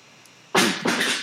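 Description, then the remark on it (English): Two loud, noisy crashes in quick succession as a cat pushes objects off tables upstairs and they clatter down, breaking a quiet stretch with no talking. “Oh, my cat just destroyed something upstairs.”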